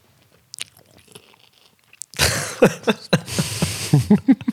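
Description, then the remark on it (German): Loud crunching of raw carrots, starting after a quiet moment and continuing as a series of sharp, irregular bites and wet chewing. “Oder wir können jetzt einfach die letzten paar Minuten einfach noch ein bisschen Rüebli essen.”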